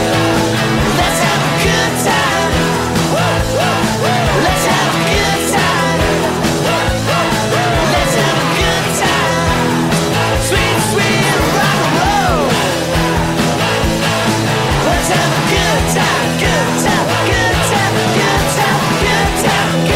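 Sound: rock song playing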